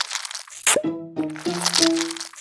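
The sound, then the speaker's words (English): Inky the octopus climbing the glass of his tank at the International Aquarium of New Zealand: wet crackling and crunching with a few squeaky, tonal suction squeals against glass, in short bursts with no talking. “That's the sound of Inky the octopus, who climbed the glass of his tank at the International Aquarium of New Zealand, crawled across the floor, and slithered down a drain hole.”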